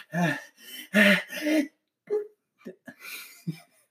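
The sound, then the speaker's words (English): A person performs a quiet, small sneeze: a few soft breathy gasps building up, then several short, stifled bursts of air with brief pauses between them. “That's your sneeze. Yeah, it's a quiet small sneeze.”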